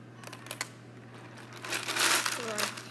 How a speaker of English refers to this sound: Oh. Ooh, it's a crunch slime. Oh, it's like crunchy slime.